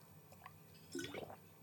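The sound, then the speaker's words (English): A brief, quiet liquid sound of cold water, like being sipped or poured. It is a short wet burst of slurping and trickling lasting about half a second against low background hum. “Cold water.”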